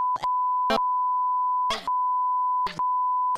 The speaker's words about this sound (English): every time you hear this word and every time I say I'll just... you please just put a beep there. Okay, now she's going to have to go back and bleep out...